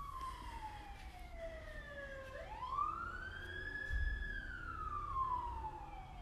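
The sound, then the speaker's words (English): An emergency vehicle siren, not a local one, wails loudly as it passes a house, its pitch sweeping down then rising in a long arc over the low rumble of traffic, with no one talking. “That one's coming past our house.”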